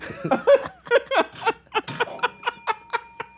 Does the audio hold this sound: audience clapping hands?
no